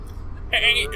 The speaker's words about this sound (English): Oh, there's the burp. Don't worry, everybody. He's still got it.